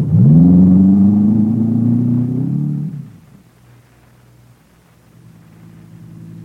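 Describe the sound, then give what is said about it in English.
A car engine roars loudly as the driver starts a car chase, its pitch climbing slightly as it accelerates, then the sound falls away to a low, steady rumble as it moves off. No one speaks. “I gun through the town, then ditch my car at the far end behind one of the buildings”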